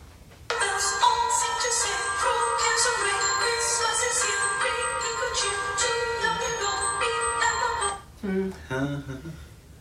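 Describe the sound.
A Christmas carol plays loudly, bright bell-like tones repeating in a quick, steady pattern for several seconds before cutting off abruptly, followed by a person starting to speak.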